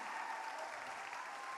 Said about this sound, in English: Stand up if you gave your life to Jesus this week. Yes, let's clap them.